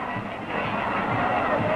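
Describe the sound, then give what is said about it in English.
A dense, steady crowd murmur of many children at a parade, specially invited to a free party, chattering and calling at once, fairly loud, with a few higher cries rising briefly out of the din near the end. “listen to the kids in the crowd here, all specially invited for an all-free party on Walt Disney”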